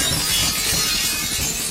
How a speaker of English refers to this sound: Watch out for the glass as we break the skylight.